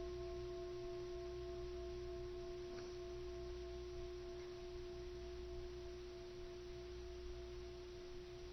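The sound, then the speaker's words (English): A meditation bell rings on in a long, steady hum, its layered pitched tones holding quietly for several seconds with no voices present. “And we're just with the sound of the bell.”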